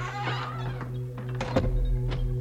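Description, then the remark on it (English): A door swings shut with a dull, solid thunk about midway through, preceded by faint shuffling clicks, all over a steady low electrical hum. “Could you close the door? Sure thing.”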